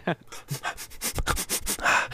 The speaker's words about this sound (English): Right. He's taking a sniff. He can't remember.